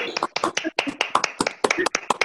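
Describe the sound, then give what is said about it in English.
An online audience, all unmuted at once to give a speaker a round of applause: a burst of scattered applause from many people, sharp uneven claps overlapping at a quick, irregular pace, with voices calling out and chattering through it. “But I'm going to unmute all now to give you the round of applause you deserve.”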